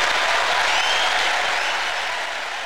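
A crowd claps steadily in a dense, sustained round of applause, loud and continuous throughout before easing off slightly at the end.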